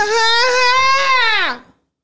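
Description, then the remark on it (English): A person imitates an elephant with one loud, shrill, sustained trumpeting cry lasting under two seconds. The pitch holds steady, then sags downward as it ends, followed by silence. “Are you good at elephant noises?”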